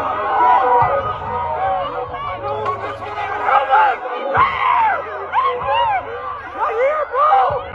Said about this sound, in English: And it's so, like, the way people are, like, asking for help. You can just hear it. That, like, people are in distress. Yes. Just straight fear of, like, I don't know what the fuck's gonna happen.